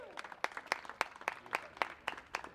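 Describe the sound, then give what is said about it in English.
An audience claps during a church service, sharp bright claps landing in a steady, even rhythm over a softer bed of scattered applause, with no voices over it. “You can clap.”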